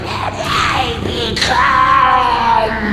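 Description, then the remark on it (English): A creature screams in long, wavering shrieks that rise and fall in pitch, loud, continuing without pause for the whole stretch with no talking over it. “It's going to be a long night with that thing screaming.”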